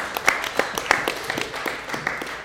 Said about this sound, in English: It's pretty cool to say you are the best in Britain at that time frame, so incredible, I think that. Just to start off with, deserves a round of applause, doesn't it?